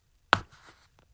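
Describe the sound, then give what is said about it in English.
An extended, bent straw is pushed into a Nippy's milk carton with one sharp, crisp pop, followed by a brief papery crackle that fades and one faint tick a moment later. No one speaks. “Going to pop it in.”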